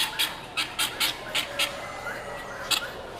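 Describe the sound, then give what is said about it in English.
A turkey squawks in a rapid series of short, harsh, raspy calls, about eight bursts in quick succession with a brief pause before the last few, moderately loud, in a rooster barn. “It's some kind of a turkey, I think.”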